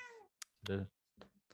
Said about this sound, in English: Is that a cat? I was wondering where that was coming from. I was like, is that my no cats around here?